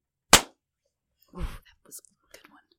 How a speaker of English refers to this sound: Okay, well, I am recording, so I'm ready to clap at any time. 1, 2, 3.